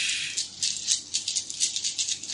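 Dice rattle and clatter in a rapid run of bright, clicking bursts lasting a couple of seconds, with no voices over them.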